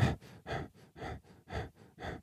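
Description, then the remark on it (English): A person imitates rapid, shallow breathing while stooped over, with about eight quick, even, gasping breaths in and out in a steady rhythm and no talking. “You're constantly breathing like this, stooped over.”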